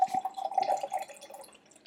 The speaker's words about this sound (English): I'll start opening the beer.